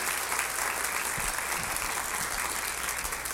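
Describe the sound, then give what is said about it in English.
An audience at an evening event claps steadily for the event's volunteers, a dense wash of many hands with no breaks, holding an even loudness throughout the few seconds. “So if I could, just could y'all just give them a round of applause, because they do all that work for absolutely nothing.”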